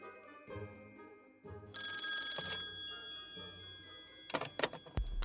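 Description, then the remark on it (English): A telephone rings for an incoming call from Portugal, with a bright, bell-like burst of high tones that swells loudly for about a second, followed by a few sharper clicks and rattles near the end. “So let's, they're on the phone.”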